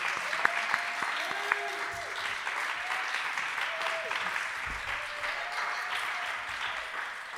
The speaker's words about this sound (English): while you guys are clapping, keep clapping.